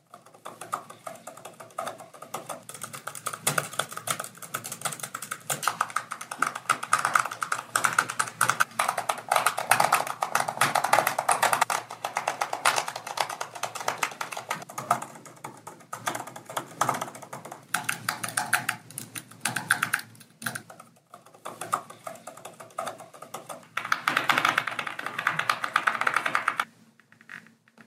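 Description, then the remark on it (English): Steady, rapid typing on a MacBook laptop keyboard, with dense irregular key clicks and a few brief pauses, no voices. “There have been some complaints about how loud these new keyboards are.”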